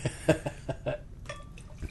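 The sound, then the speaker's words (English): Rinse water pours into a glass in a quick series of gurgling glugs and splashes, fairly quiet, with no talking over it, during a beer tasting. “Grab my rinse water.”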